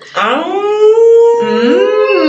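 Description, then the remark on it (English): A loud, wolf-like howl: a long sustained tone that slides upward, breaks briefly, then rises again in a second drawn-out wail, with no talking over it. “That sounded like a wolf there.”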